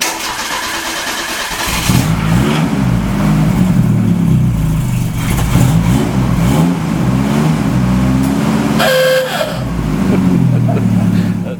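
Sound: car engine revving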